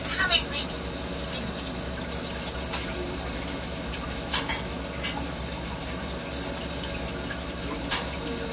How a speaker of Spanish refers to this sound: Mira cómo viene la lluvia.